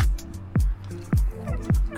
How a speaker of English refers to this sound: I'm drinking water.